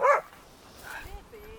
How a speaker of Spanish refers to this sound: Tranqui, tranqui. ¿Qué pedo? Se volvió loco. Madre mía, perritos. Perrito loco.